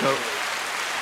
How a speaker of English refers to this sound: We have a crowd today. We always like when we have a crowd. We'll go ahead and get them the crowd applause. Yeah, we got the crowd applause.